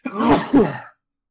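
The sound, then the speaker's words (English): A single loud sneeze in two quick bursts, a breathy voiced intake followed by a sharp, noisy expulsion, lasting under a second before silence. “Bless you.”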